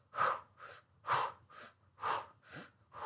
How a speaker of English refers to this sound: These good, solid, powerful breaths are going to be changing the body's chemistry as you're doing this exercise.